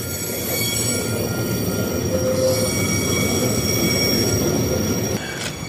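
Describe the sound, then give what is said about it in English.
A long train with tarpaulin-covered cars rumbles steadily past, its wheels giving off thin, sustained metallic squeals over the continuous roar of rolling cars. “It's a long train.”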